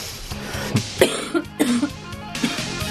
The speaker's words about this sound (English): That made me cough laugh.